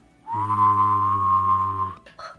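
Someone whistles a steady, sustained note while humming a low tone at the same time, the two blended for about a second and a half, fairly loud, before a brief shuffle.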